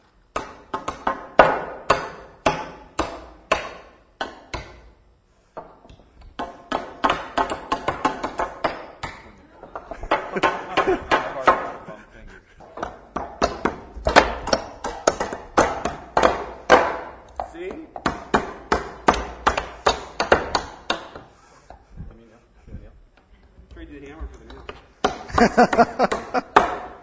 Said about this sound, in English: Okay, grab some nails here. Some hammers. Some of you might need to hold it together while someone else is hammering.